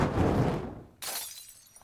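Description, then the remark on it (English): A thrown Molotov cocktail bottle smashes with a sharp, bright crash of breaking glass, following a loud, low whooshing rumble that fades out. No voices, and the glittering shatter trails off quickly. “This Molotov cocktail is brought to you by communism!”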